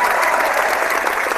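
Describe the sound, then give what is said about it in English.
A crowd applauds steadily throughout, a dense, even wash of many hands clapping at a constant loudness with no pauses or individual claps standing out. “Should I applaud this? Yeah, sure.”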